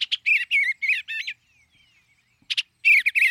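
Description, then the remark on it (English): A bluebird's mellow, burbled song: a run of short warbling phrases, a brief quiet pause with faint twittering, then another burst of soft, rolling notes, clear. “Who wouldn't want bluebirds nesting close by? Flashes of azure as they fly, their mellow, burbled songs.”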